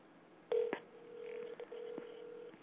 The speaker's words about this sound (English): It's ringing. Still ringing.